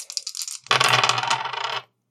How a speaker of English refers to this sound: That's a 4. A 4 is the highest of 4 dice.